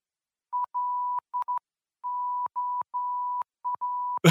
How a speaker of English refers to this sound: On the plus side, I did find out what LOL is in Morse code.